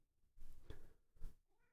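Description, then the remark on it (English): A cat meows twice, each call a short, slightly strained cry with a brief pause between, the second a little louder than the first, as it is brought up to its cat tree. “I was bringing you up for your cat tree.”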